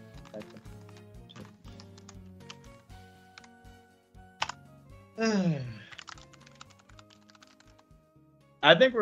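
Rapid, uneven clicks of typing on a computer keyboard run throughout, fairly close and soft, interrupted by a couple of brief louder vocal sounds.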